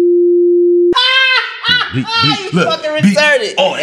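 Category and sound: signal or alarm, electronic beep tone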